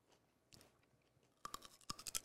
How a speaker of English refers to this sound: Sorry for everyone at home for chewing.